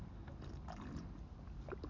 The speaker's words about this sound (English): I got shit in my throat. It's so fucking weird. I gotta drink some water. Hold on a sec.